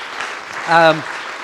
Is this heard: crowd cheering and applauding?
yes